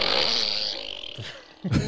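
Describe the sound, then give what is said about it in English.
A toy fart gun in a studio lets out one long, loud, drawn-out raspy fart sound, with no talking. It sputters and wavers before ending in a short, sharp burst. “That's the practical usage for the fart gun in the studio.”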